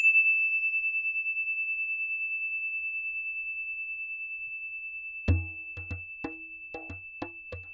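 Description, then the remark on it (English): A single high bell tone, rung to signal the start of a story, rings out and slowly fades, holding a steady shimmering pitch; toward the end a few soft, irregular knocking sounds join it. “Here comes the story bell.”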